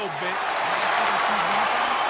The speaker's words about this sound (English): Round of applause.